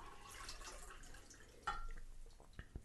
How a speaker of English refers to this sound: We need to refill our water so we can clean our glasses. We don't want to waste our sobriety on a beer that we're not enjoying as much.